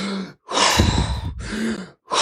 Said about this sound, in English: And the whole thing is you're breathing like this.